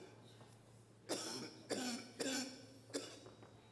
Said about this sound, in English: Is that cough?